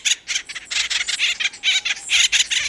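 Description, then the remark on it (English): Acorn woodpecker calls: a rapid, raucous series of harsh, nasal squawks repeating in quick bursts, loud, with no talking. “The cartoon Woody was an imp, but the acorn woodpecker is an industrious bird.”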